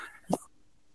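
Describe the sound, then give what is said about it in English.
A single quick cough, a short sharp burst that fades almost at once, followed by near silence. No talking. “Sorry, just unmute for a quick cough there.”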